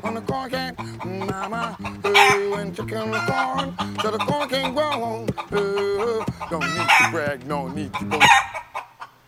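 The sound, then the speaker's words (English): Loud, rapid chicken squawking and clucking fills the whole stretch, choppy and insistent, riding over a rhythmic, tuneful backing with sharper squawks breaking out near the start and end. “Chicken in the corn, so the corn can't grow.”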